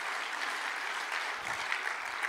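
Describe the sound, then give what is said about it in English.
A crowd claps together to give God praise, a dense, steady wash of applause, many overlapping hand claps forming a bright, continuous texture at a moderate, even level with no voices on top. “Would you clap your hands and give God praise for a moment?”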